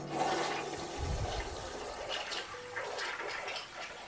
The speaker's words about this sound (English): Yeah, how do I make... Flush it? Yeah. It's the little thing right here. Just push it down, and...